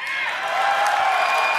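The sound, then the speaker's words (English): A large crowd with many World of Warcraft Classic fans cheers and applauds steadily, a dense wash of clapping and shouting that stays loud throughout without any clear speech. “A lot of classic fans in the crowd.”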